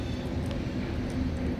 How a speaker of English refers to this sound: Kind of looks like the same train. It just turned around and came back.